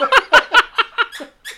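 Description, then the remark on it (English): A dog squeezes a squeaky toy about seven times in quick succession, each short, shrill squeak fairly loud, with the squeaks growing a little weaker toward the end. “We're trying to have takes, and then he like grabs a squeaky toy.”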